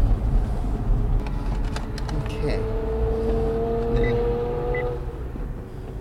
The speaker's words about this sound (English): You know, this is Chevrolet's supercar called the Z06 Corvette. And out of the box, this car is actually ready for the racetrack.